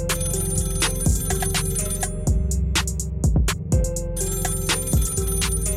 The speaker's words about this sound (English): Before I can make sense of it, I heard an old-fashioned phone ringing by the observation deck. I followed the sound.